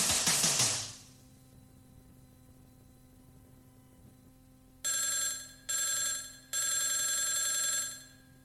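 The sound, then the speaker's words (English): A telephone rings in three quick, bright bursts near the end, the last one longer, before an answering machine picks up, after a brief noisy crackle at the start and a few seconds of low steady hum. “I am the answering machine. I'm just here waiting for the phone.”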